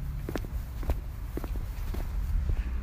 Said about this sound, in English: Yes, you can hear my footsteps.